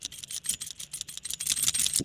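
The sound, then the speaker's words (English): A bunch of keys jingles and clinks in quick, irregular bursts, a bright metallic rattle that keeps going for a couple of seconds with no voices. “That's just the sound of your keys jingling.”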